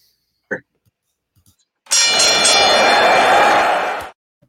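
A loud bell rings continuously for about two seconds with a harsh metallic clatter to start a trivia segment, then cuts off abruptly. A brief knock comes just before it; no one speaks.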